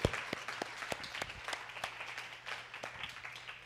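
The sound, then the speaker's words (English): A church audience claps together in steady, dense applause for the announcements, many overlapping hand claps sustained for a few seconds, with a faint low hum underneath and no talking. “Can we just give Mark a huge round of applause for that?”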